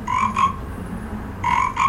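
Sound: frog croak sound effect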